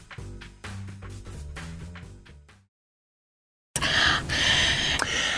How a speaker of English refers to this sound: Why are you panting on the mic?